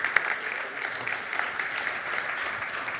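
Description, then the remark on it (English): A group of people clap steadily for three seconds to celebrate a couple's 37th wedding anniversary, a dense, even patter of many hands at moderate volume with no voices over it. “So that deserves a clap, I think.”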